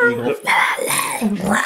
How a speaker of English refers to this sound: Coyote outside.